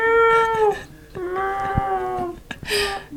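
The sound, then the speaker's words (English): A female cat lets out two loud, drawn-out meows, the first sliding downward in pitch, the second longer and steadier, followed by a short breathy rustle. “Meow, even though. Wow, is she really saying that?”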